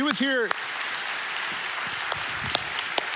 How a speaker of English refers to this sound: Yeah, I mean, you can clap for that.